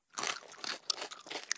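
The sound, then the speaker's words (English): Crunchy chewing of a bite of warm fried mealworms: a quick run of crisp, crackling bites in an uneven rhythm, fairly quiet, with no voices. “Listener, I just have to finish chewing this bite of warm mealworms.”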